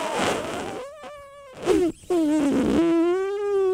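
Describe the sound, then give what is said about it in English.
A deflating balloon flying around the room squeals and sputters in a wavering, buzzy whine that bends up and down in pitch, breaking off briefly twice before a long steady squeal. No one speaks. “It was a balloon flying around the room.”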